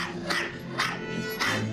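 A small, very yappy dog named Camille in a film yaps three times at a pool house in a steady rhythm, sharp high-pitched barks spaced about half a second apart over a faint background hum.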